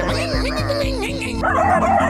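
A dog barks and yips in a quick series of short, high calls over a steady droning background, loud throughout.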